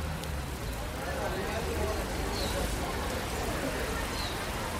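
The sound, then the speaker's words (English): Heavy rain pours down steadily on a city street in São Paulo, a dense, continuous hiss with a low rumble underneath, holding at an even, fairly loud level throughout. “Standing here, with the rain pouring down, it's hard to believe that this city, in the world's most water-rich country, is threatened by drought.”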